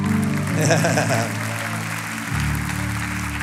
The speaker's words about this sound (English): There should be more claps for that, I think.